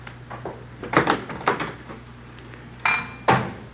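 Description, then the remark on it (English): Dishes left all over a messy kitchen clink and clatter as they are handled, a handful of sharp knocks spread irregularly over a few seconds, one with a brief ringing tone, over a low steady hum. “Dishes all over the place.”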